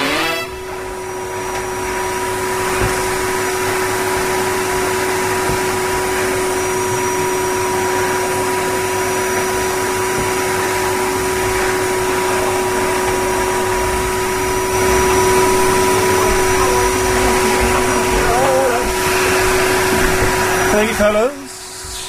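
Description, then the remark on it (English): A vacuum cleaner drones steadily and loudly, its constant motor whine holding for about twenty seconds with faint shifts in pitch as it moves, before cutting off abruptly at the end. “Just getting the hoovering done while we're, just getting the hoovering done”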